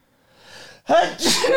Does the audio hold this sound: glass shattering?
no